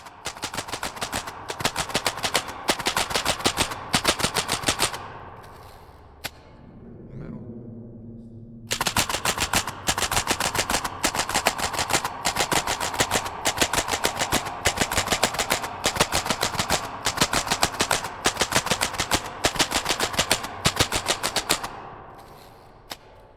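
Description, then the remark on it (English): A typewriter clacks away in fast, steady key strikes, pauses midway for a lower rattling, ratcheting sound like a carriage return, then resumes its brisk typing until it tapers off. “Like I say, you know, I could totally be tricking myself on that, and it could just be a single microphone on a typewriter in a hallway.”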